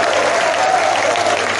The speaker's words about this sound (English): Oh, clap for that guy. Clap for the guy. The guy is powerful.